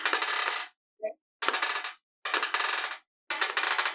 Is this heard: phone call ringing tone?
no